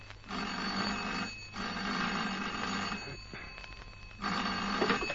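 An old-fashioned office telephone bell rings loudly in repeated bursts, each ring a harsh metallic jangle separated by short pauses, with no voices.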